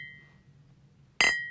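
A single bright glass clink rings out sharply after a moment of quiet, its high tone lingering and slowly fading, as two glasses are tapped together in a toast.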